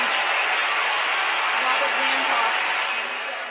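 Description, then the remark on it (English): A large tennis crowd roars in a dense, sustained wash of cheering and applause as Lindsay Davenport hits a backhand winner down the line, loud and steady throughout before easing off slightly at the very end. “And the crowd roars.”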